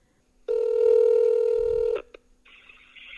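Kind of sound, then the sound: signal or alarm, phone number being dialed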